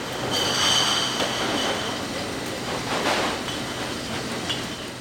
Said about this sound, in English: Glab points to recycled clear and green glass bottles moving down the conveyor belt